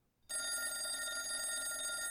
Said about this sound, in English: On a seemingly mundane day in 1969, Armstrong was sitting in his office, and his phone began to ring.